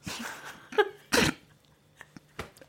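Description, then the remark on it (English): A loud, rasping belch bursts out in two pushes, a shorter gurgle and then a bigger, rougher blast, followed by a few faint clicks and quiet breathing. “Excuse me, I'm just going to belch.”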